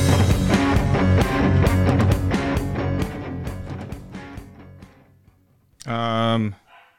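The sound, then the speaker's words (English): Busy music plays and gradually fades, then a single loud dog bark cuts in near the end, followed by a brief quieter sound. “Hey, dogs. Hey, I'm trying to make a podcast over here.”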